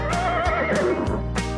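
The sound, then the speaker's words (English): A horse on a farm neighs loudly, a single shaky whinny that wavers and slides downward in pitch over a second and a half, with no voices around it. “Right, the horses go as they gallop around the farm.”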